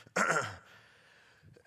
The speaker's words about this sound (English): You have to excuse my coughing. It's this time of year.